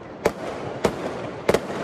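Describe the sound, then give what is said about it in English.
Fireworks set off by people in the USA in June explode in a quick series of sharp bangs, about three or four sudden cracks spaced irregularly over a steady noisy background. “Wild fireworks are now a nightly event across the USA.”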